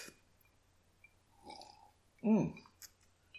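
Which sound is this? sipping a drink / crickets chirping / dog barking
sipping a drink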